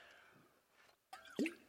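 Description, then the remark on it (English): A water bottle drips, a couple of distinct wet drops and plops in quick succession after a quiet stretch, with no voices. “That's my water bottle here.”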